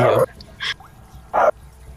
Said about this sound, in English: Ooh, dog. Growling dog. That freaked me out.